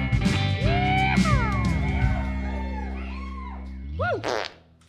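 A long, loud cartoonish fart sound effect played from a soundboard, buzzing and sputtering for several seconds with wobbling pitch, then a couple of squeaky upward blurts before it cuts off. No talking.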